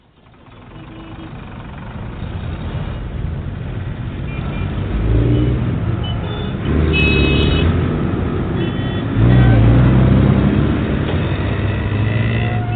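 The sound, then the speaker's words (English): A motorcycle engine with a sidecar roars, its loud, steady drone surging higher in a few bursts of revving as it speeds along and rounds a curve; no one speaks. “Zoe threw back her leather-clad head and roared in delight as she rounded a curve at the last minute on her motorcycle”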